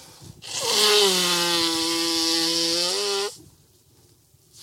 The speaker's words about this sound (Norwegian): Kan vi ta en, skal jeg introdusere den med å snyte meg? Ja. Da flytter jeg mikrofonen litt vekk fra munnen.